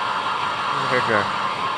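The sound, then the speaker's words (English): A hair dryer runs with a steady, loud whooshing roar throughout, while a voice briefly speaks over it partway through. “No, this is a hair dryer.”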